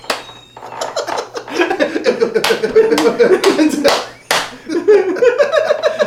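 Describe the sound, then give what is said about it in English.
Several sharp hand slaps crack out in quick succession, like palms smacking together in high fives given while running, over continuous excited voices and laughter. “And we run and they slap it.”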